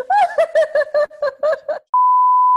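A burst of rapid, rhythmic laughter gives way to a loud, steady, high-pitched censor bleep that holds flat and unbroken for nearly a second until the end.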